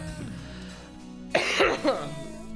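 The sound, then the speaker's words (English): A staged cough, two harsh, throaty bursts in quick succession, breaking over quiet music playing in the background. “It's weird how you can fake cough and accidentally just scoot the song up 2 minutes.”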